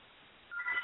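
A phone rings faintly in the background, a short burst of electronic tones that starts halfway through and grows a little louder, with no one talking.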